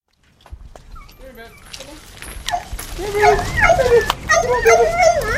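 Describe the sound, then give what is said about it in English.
Two dogs chained up in the yard of a house bark, yip and whine excitedly outdoors, starting softly and building into a loud, overlapping chorus of sharp barks and high whimpers. “When we get to her house, the two dogs are still chained up in the yard,”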